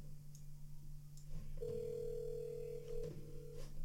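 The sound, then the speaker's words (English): A phone call to Spenny ringing out: one steady, mid-pitched ringback tone lasts about a second and a half, then fades, over a low electrical hum. No one speaks. “Actually, I don't think Spenny's ever answered one of my phone calls.”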